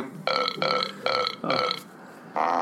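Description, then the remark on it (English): A string of loud burps, four in quick rhythmic succession, then a short pause before a fifth long, droning belch. “Wait, what does burp mean?”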